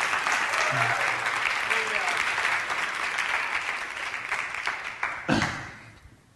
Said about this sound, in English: That was awesome, though. Thank y'all so much. You give them a big hand clap.